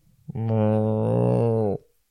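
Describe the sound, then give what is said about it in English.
A person's voice imitates a cow with one long, low, steady moo lasting over a second, held at a fairly even pitch before ending abruptly. No other sounds accompany it. “You hear a cow.”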